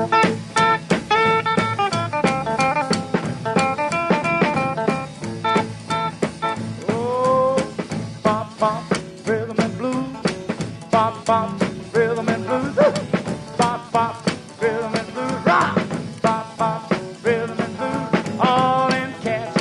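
A rockabilly song recording plays loud for the whole stretch, with bright twangy guitar lines over a steady, driving slap-style beat and no talking.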